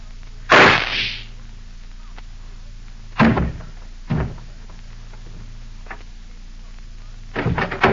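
gunshot

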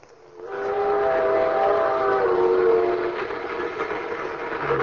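train running with whistle

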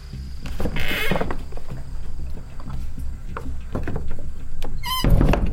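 cabin door being opened

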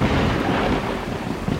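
thunder rumbling

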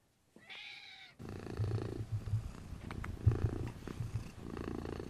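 domestic cat purring

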